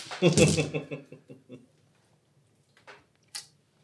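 A handful of gear, attribute and skill dice, rolled for an axe-fighting check, clatters onto a hard surface in a dense burst, then bounces and rattles to a stop over a second or so, with two lone clicks following a moment later.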